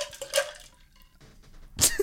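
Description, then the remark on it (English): A drink splashes onto a table: a short wet burst, a quiet pause, then a second louder splatter near the end. No one speaks. “We had a spill.”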